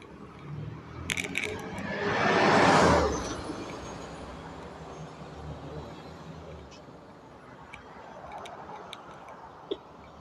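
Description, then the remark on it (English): Outdoor street traffic rumbles steadily as a bus, which someone has just stepped off, lets out a loud, rising hiss and whoosh early on, then fades to a constant background roar dotted with faint clicks. “Alright, I'm off the bus.”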